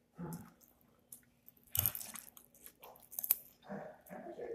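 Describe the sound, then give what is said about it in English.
Wet chewing of soft food, boiled white potatoes cut into coin-like circles with tomatoes and purple onions, eaten at breakfast with tea, with a few moist squishes and light crunchy bites in an irregular rhythm, no talking. “And with it, I'm eating, I'm drinking tea.”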